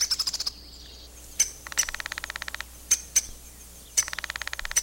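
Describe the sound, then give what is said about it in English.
A black bird with red wings calls from the leaves of a nearby tree, jumping from branch to branch, in quick, rattling trills: three bursts of rapid chattering notes separated by sharp single chips, clear and fairly loud with no voices present. “He pointed through the leaves of a nearby tree, and the bird jumped to another branch, and then another.”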